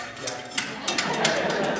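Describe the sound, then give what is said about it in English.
A cook hits a spoon against a cooking pot to make cooking sounds, a quick, uneven series of about six bright metallic strikes over a steady background hiss, with no talking. “The cook begins to hit pots and spoons together to make cooking sounds.”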